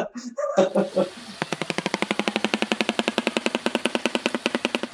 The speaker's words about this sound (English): Yeah, and they can clatter the bill and it sounds like freaking gunfire. It's the scariest thing.